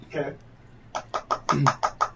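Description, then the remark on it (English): A quick, even run of about seven knocks on a door, made by candidates arriving to be interviewed, follows a brief spoken word, with a voice briefly overlapping the later knocks. “Yeah, okay, they should be knocking on the door any minute now.”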